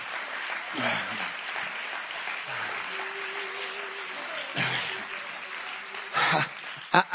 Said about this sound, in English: I know you're clapping, but you know what?